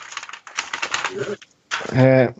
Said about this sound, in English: Excuse the rustling.